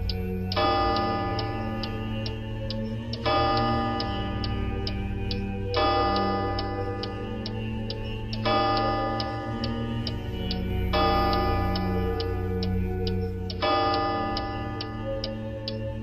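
A clock in a quiet house chimes six times at 8:15 in a slow, even sequence, each ringing tone sustaining until the next, while a steady tick-tock continues underneath. It is fairly loud, with no voices.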